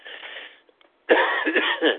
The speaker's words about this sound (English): Should we change the game to every time I have to cough?